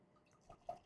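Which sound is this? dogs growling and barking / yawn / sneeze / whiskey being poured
whiskey being poured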